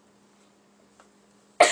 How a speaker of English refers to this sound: Why are you coughing? Because I coughed. You coughed?